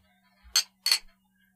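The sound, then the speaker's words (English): Two bright, ringing clinks of glasses of strawberry peppercorn saison beer tapped together in a toast, a fraction of a second apart, fairly loud in an otherwise quiet moment. “Okay, cheers. Cheers.”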